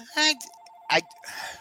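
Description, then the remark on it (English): A landline phone rings with a steady, fairly faint electronic tone lasting about a second, while loud bursts of voices talk over it. “Man with a real phone line. Come on. You know, you just never, I forget to shut it off.”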